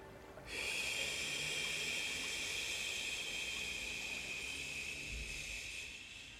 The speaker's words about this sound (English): Fully in. Hold. You know what to do on this exhale. Slowly release all that stress.